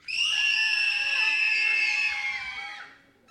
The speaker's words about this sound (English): So I'm going to count to three, and I want you to give me just the most terrifying scream that you can think of. Okay? Are you ready? One, two, three.